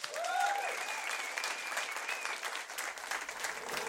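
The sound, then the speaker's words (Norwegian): Steady applause from an audience for the evening's guest, a dense wash of many hands clapping at once, fairly loud and sustained throughout, with a faint whistle rising above it near the start. “Si god jul til alle sammen, og en stor applaus til kveldens gjest,”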